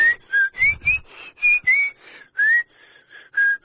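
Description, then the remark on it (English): Someone whistles in short, wandering notes with no clear melody, about ten separate toots in a loose, halting rhythm, with no talking. “Just this irritating tuneless whistling.”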